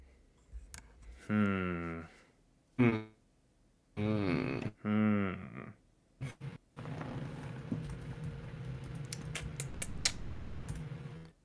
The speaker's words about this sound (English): Just typing it again. You're just typing the same thing again.